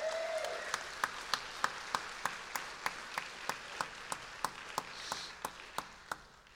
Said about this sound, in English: Would y'all applaud him for graduating the program?